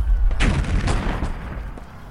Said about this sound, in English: Ready the cannons. Ready, aim. Fire.